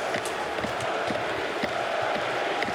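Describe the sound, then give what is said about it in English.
A big hockey arena crowd in Montreal chants "Fleury" in unison for the goalie Fleury, a steady rhythmic roar with repeated beats rising over continuous background din, loud and sustained throughout, with no individual voice standing out. “And listen to the crowd. Fleury, they're chanting.”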